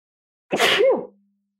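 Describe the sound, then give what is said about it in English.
A single loud sneeze bursts out abruptly, a sharp explosive blast of breath lasting about half a second before cutting off into silence. “I'm going to sneeze.”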